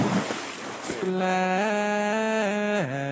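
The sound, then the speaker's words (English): A brief rushing splash of water opens, then quickly gives way to a steady, sustained musical tone that shifts up and down in pitch in distinct steps. “Splash.”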